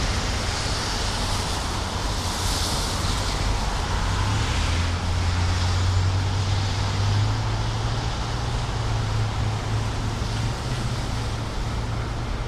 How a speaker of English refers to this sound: There's an endless string of cars going one way, an endless string going the other way.